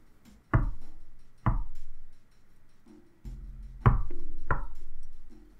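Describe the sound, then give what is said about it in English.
Four heavy, loud knocks on a back door, struck in two pairs with a pause between them; each thud is sharp with a deep, resonant body, and no one speaks. “A second set of knocks on the back door.”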